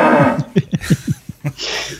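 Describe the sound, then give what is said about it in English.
A horse whinnies, a loud shaky neigh that breaks into a quick run of falling, trembling pulses before tailing off into a breathy snort. “Kev needs the money because he has to feed that horse of his.”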